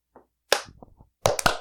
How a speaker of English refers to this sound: All give me a clap.